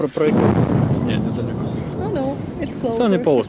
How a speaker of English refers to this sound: Here's the beginning of shelling. Do you hear that all the time? Так, кожного дня. Every day.